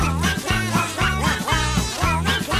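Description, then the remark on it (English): A voice imitates Donald Duck, quacking in a bouncy rhythm over a steady musical backing with a pulsing bass line. The quacks are loud and repeat throughout the short stretch. “Those are all the quacks we need.”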